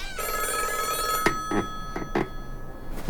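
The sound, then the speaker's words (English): An old black hardline rotary-dial telephone on the counter in the lobby of a long-empty lodge rings intermittently: a sustained, bright metallic ring, then a few short, sharp bursts, with no talking. “It was a hardline phone, an old one, black, with a rotary dial rather than a keypad.”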